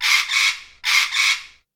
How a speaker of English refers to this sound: So, what's that sound? A parrot! A parrot.